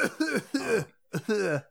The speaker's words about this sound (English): What? The coughing.